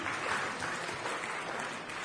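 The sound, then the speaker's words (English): An audience applauds a volunteer who is told to take a seat, with steady, dense clapping that fills the whole stretch at an even, moderate loudness, with no voices heard over it. “Give him a round of applause, take a seat.”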